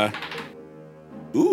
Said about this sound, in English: Okay, here we go. Get that good dice audio. Yeah. Several. Yes. Several dice.